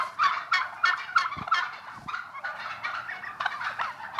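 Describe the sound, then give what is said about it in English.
A crowd of turkeys on a turkey farm gobbling together, a dense, overlapping chorus of warbling calls with rapid bursts rising and falling, continuous throughout, with no one speaking. “As I quickly discovered, if you've got anything to do with a turkey farm, the traditional bird dominates not just thoughts of Christmas, but pretty much the whole of your year,”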